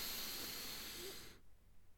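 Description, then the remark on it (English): A single slow, deep breath drawn in for a count of three as part of a breathing exercise, a soft airy rush lasting over a second before stopping abruptly, leaving near silence. No one speaks. “And just take those breaths. Breathing in for 3.”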